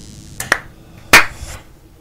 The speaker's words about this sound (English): Okay, we're gonna clap in three. Oh shit, two. Shit. One.